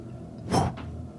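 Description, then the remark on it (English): Wings of a vrock, a large vulture-like creature, flap in the distance in silent caverns: a soft, breathy whoosh followed quickly by a second, fainter one, over a low steady background rumble with no voices. “Suddenly you hear the flap of wings”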